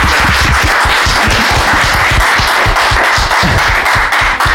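An audience applauds steadily with dense, overlapping hand claps and some whistling mixed in, loud and sustained throughout with no talking.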